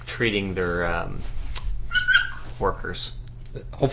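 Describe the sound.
A dog that wants to play whines in a high, wavering tone, then gives a few short yips and barks while people keep talking over it.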